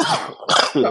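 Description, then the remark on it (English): A quick run of three harsh coughs packed into about a second, each burst loud and raspy, with no talking around them. “easy there, cough button.”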